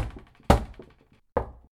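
Three solid signal knocks on the wooden door of Athos's apartment, unevenly spaced with a longer pause before the last, each a sharp rap with a short ringing decay and no one speaking.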